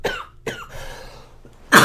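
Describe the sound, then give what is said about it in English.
Two sharp coughs in quick succession, followed after a pause by a louder, harsher burst of coughing at the end; no one talks. “I got a cough.”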